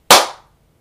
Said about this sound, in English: All right, so we are recording. All right, we'll do a 1, 2, 3 clap. So, 1, 2, 3.